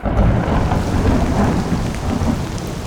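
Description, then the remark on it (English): Heavy, torrential rain roars steadily and loudly throughout, with deep rumbling thunder rolling underneath the downpour. No voices are present. “Torrential rains in 1898 caused the Yellow River to overflow its banks.”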